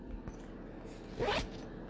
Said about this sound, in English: Like, sorry for the zipper. Sorry.